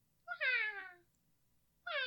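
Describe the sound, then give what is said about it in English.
A voice imitates the call of a pygmy nuthatch that sat outside a window in Wisconsin, a call that sounds like a child crying: a loud, high, wavering wail that slides downward, then a second cry begins after a short pause. “It would wake me up, and it sounded like a child crying, but it was just a bird.”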